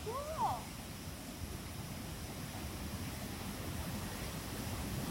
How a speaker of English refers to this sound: Now we are above the waterfall. And I'm gonna let you listen to it because it's, oh my gosh, we are above it.